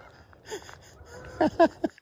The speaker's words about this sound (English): Unless we're, hello, three ravens, incoming geese.